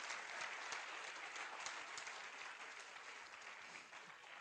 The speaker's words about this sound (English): Qué triste aplauso para una estrella de la mañana tan linda. Can't you clap for a morning star?